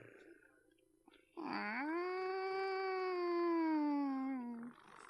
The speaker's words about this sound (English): Will we be able to hide from the cats in there?